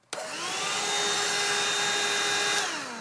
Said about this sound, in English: So this is the vacuum. Okay. And it, hold on, I want to make sure it's not like too loud.